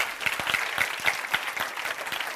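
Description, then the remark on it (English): An audience claps their hands together at a preacher's call during a sermon, a dense patter of many overlapping claps at a steady, lively pace, with faint crowd voices underneath. “The family needs mother and wife. Clap your hands.”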